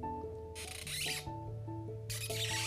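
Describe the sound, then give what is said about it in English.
A person imitates dolphin language with tail and mouth: high, squeaky dolphin-like chirps, fairly loud, broken up by two bursts of rushing, splashy noise over a steady tonal background. “Would you like to hear the dolphin language with my tail and my mouth?”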